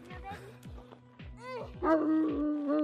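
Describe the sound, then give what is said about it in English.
A female tracking dog being hooked up lets out a drawn-out, wavering howl that swells louder in the second half, with people talking and some low thumping underneath. “Howls normally when we start tracking.”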